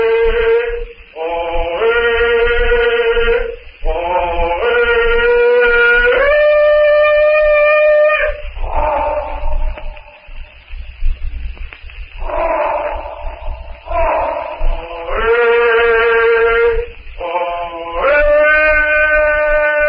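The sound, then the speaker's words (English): Tarzan's loud jungle yell for help: long sustained yodeling cries that break sharply between high and low pitches, repeated in rising and falling bursts with brief gaps, heard alone. “Tarzan's powerful throat comes his demand for help.”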